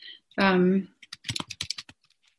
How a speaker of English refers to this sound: So I'll start typing now, and we'll see how it goes.